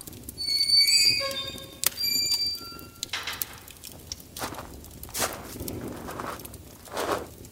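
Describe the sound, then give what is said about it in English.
Slow, uneven hoof clops of a horse that needs shoeing, walking on a hard surface at a forge, following a brief ringing, tonal sound at the start. No one speaks. “A sip of water for me and my horse, who also needs shoeing.”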